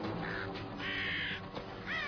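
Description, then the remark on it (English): A crow caws three times in quick succession, harsh and raspy calls, with no talking over them. “Oh no, it's a crow.”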